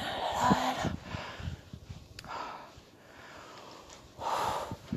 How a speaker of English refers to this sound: Lots of breathing, breathing. It's healthy. It's healthy, it's great, it's good.